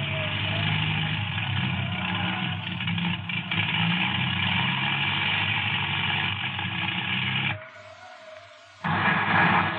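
A propeller plane's engine drones loudly and steadily as the plane approaches and circles an airfield, continuous, briefly dropping away to a thinner hiss near the end before the roar returns.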